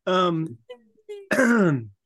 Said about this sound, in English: So, sorry for those listeners. I just coughed into the microphone.